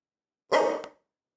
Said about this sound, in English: His bark sounds so funny. Sounds like a zipper.